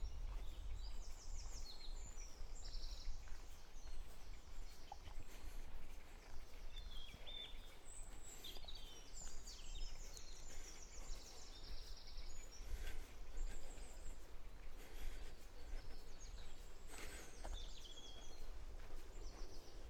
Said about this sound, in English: Walking past a heronry. Not quite sure what bird is making that noise. It could be the herons.